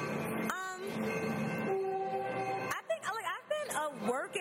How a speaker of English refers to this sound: Longer than that horn's been honking. Oh, wow, that is a cute train.